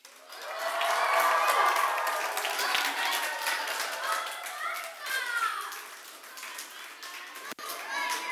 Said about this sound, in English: One more time. Let's see it again. All right, cheer them on, guys.